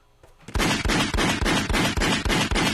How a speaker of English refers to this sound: That's gunshots right there.